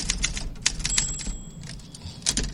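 A burst of typewriter typing played as a sound effect, with sharp irregular key strikes clacking in quick succession and a brief ringing tone like a carriage bell, over a low rumbling background.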